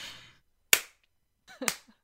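Two sharp hand claps about a second apart, loud and crisp, the second preceded by a softer smack, with a faint hiss at the start and no talking.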